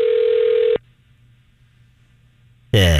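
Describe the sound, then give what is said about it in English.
A loud, steady ringback tone on a phone line sounds once briefly, then cuts to a quiet, humming line before a voice abruptly starts speaking at the end. “I don't know where we're calling.”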